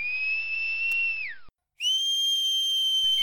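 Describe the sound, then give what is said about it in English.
A long, shrill whistled note that glides downward, a brief pause, then another sustained high whistle that sounds fuller, as if several people whistle together. No talking. “She whistled. All whistled.”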